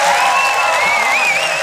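A crowd applauds loudly and steadily, a dense wash of clapping with a few whistles and cheers rising above it.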